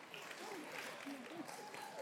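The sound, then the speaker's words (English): An audience claps steadily for about two seconds, a dense, even patter of many hands at a moderate level, with faint murmuring voices mixed in underneath. The clapping comes at a live, streamed talk event before the speakers have done anything. “Clapping already. We're already getting claps.”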